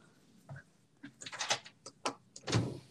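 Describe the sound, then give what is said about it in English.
A door is opened and then locked, with a series of sharp mechanical clicks and clunks from the latch and bolt, fairly quiet, ending in a louder thud. “I just locked the door.”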